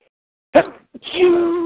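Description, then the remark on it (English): A sudden human sneeze: a sharp burst of air, a brief pause, then a longer voiced, drawn-out tail, heard alone without talking. “Sorry. Bless you. Bless you.”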